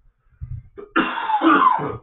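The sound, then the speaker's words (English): A person coughs, a low throaty rumble building into one harsh, loud cough burst that trails off rasping, with no talking. “Once I get going, I'm starting to cough, but I'm sorry.”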